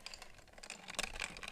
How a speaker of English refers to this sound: I've got a nice glass of ice water with a glass straw.